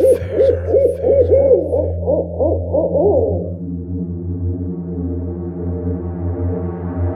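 A quick run of owl hoots repeats in rapid, wavering succession for a few seconds, then fades into a steady low droning tone that continues to the end.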